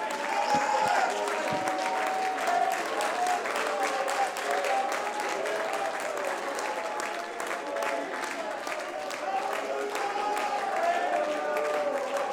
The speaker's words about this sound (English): Come on, clap your hands to him right now.